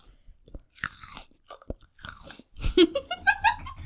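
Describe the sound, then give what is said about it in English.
Crisp crunching as someone bites into a very large grape and chews, several sharp wet snaps and crackles in quick succession, growing louder toward the end. “I want you to hear how crispy this very large grape is.”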